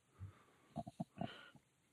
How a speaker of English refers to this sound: Your internet broke up.